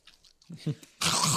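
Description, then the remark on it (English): Crunchy food being chewed, a few soft bites followed by a loud, dense burst of crunching, with low murmured vocal sounds in between. “While you're crunching”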